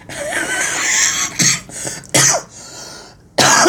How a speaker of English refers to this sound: I still have a cough.